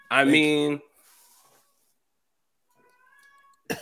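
A single loud, drawn-out meow from a speaker's pet cat, with a strong harmonic wail, followed by faint rustling and a thin high tone, then a brief sharp burst at the end.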